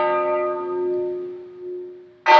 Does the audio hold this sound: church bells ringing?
yes